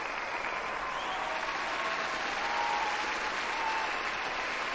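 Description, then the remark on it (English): Steady, dense applause from a crowd, a continuous wash of clapping that holds an even loudness for several seconds without voices on top. “I need all my applause.”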